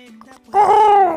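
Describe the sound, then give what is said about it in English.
A bird lets out one loud, sustained call, a rich harmonic squawk lasting about half a second, following a moment of low, quiet hum. “And shit, is that bird still in well, there?”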